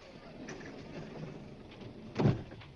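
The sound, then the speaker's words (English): A steady low mechanical hum runs throughout as an elevator door slides shut with a single soft thump near the end and the car starts moving, fairly quiet. “Watch the door, please. Blasting off.”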